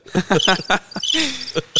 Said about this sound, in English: I need some crickets.